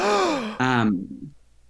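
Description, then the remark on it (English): A loud vocal gasp, dramatically voiced with a falling pitch, in two quick breathy bursts that trail off into quiet. No words are spoken. “Gasping.”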